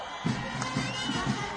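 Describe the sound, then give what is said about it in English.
A crowd of close to 100,000 people at Ambo Stadium in Ethiopia roars and cheers at the arrival of Prime Minister Abiy Ahmed, a steady, dense wash of noise with a few louder swells and indistinct voices blended into the din. “An earth-shaking welcome, a crowd beyond the control of the security forces.”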